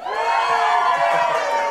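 A crowd cheers loudly and steadily to vote for a contestant to win, a dense wash of many voices shouting and whooping together, sustained without a break for the whole moment.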